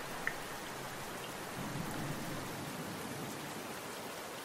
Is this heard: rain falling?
yes